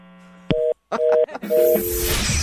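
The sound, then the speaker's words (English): A phone hang-up tone: a low steady hum, a sharp click, then three short bursts of two-pitched electronic beeps, fading into a wash of hissy noise. No one speaks. “Okay, sir, I need to hang up with you now.”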